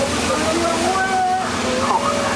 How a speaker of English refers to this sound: Oh, no, waterfall.